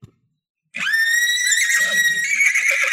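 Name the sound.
horse whinnying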